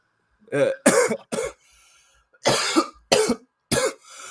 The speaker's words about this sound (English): My blunts got me coughing right now.